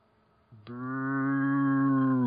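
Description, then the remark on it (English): A single long, low-pitched "boooo" from one voice, steady in pitch and swelling slightly in loudness for nearly two seconds after a brief quiet moment, with no other talking. “Who booed? Who booed?”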